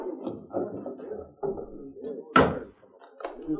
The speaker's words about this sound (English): Should I unbar the door? Yeah, we'll see what he wants. I don't believe in taking chances with strangers.